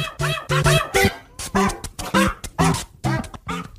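A dog, Monkey the Dog, barks and yips in a quick run of about nine sharp, fairly loud bursts, some with a whiny edge, with no one talking over them.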